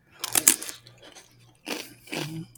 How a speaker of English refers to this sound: Those have some crunch. Yeah, they're like it's like popped rice kind of. Mm. But they're still very thin.